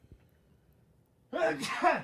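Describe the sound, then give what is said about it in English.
After a moment of near silence, someone lets out a single loud sneeze, a sudden voiced burst that lasts under a second. “Bless you.”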